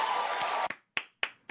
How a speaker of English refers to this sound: The applause didn't go on long enough.